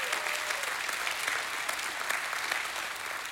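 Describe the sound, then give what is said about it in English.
A church audience, asked during a sermon to give a hand clap and thank God for his grace, breaks into steady applause, many hands clapping in a dense, continuous patter that holds an even level throughout, with no voices rising above it. “Somebody give him a hand clap and thank him for the grace of God.”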